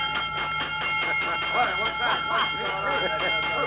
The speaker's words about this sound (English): Oh, ring that bell